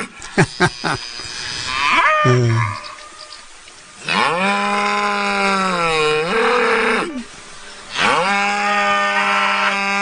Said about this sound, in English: All right, that was a cow.